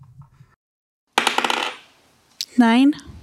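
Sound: dice being rolled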